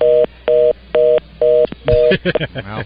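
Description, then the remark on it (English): A telephone line tone on faulty phone lines pulses on and off five times in an even, rapid rhythm, loud, then breaks into garbled, glitchy bursts of distorted line noise. “Well, just to let the record show, once again, we did not do that. Still our great phone lines that we're working to get fixed, folks.”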